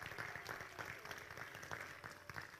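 A crowd claps steadily, a dense patter of many hands forming sustained applause at an even, moderate loudness for a few seconds, with no voices standing out.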